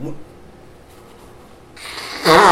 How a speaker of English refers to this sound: I had to blow my nose.